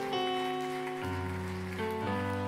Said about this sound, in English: Clap your hands to the Lord and give him praise for the word today.